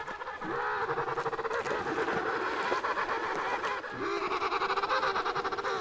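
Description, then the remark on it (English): Emperor penguins on the Antarctic ice call loudly and without pause, many birds overlapping in a dense chorus of harsh, honking, rapidly pulsing trumpets that dip only briefly before surging again. “These emperor penguins, made famous by the movie March of the Penguins, are the largest of all of these tuxedo-clad birds.”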